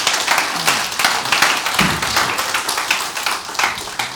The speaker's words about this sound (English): Why don't y'all give the band a round of applause? They did a great job.